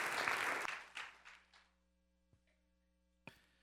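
A burst of applause, dense and loud at first, quickly thins into a few scattered claps and fades out, leaving a low steady hum and two faint clicks.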